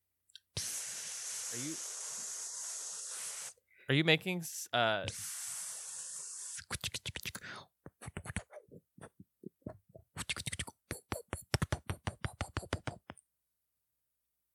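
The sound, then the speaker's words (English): An air conditioner makes a weird noise: a loud, steady hiss for a few seconds, then a brief spoken question, followed by bursts of rapid, irregular clicking and rattling that stop abruptly. “My AC was making some weird noise.”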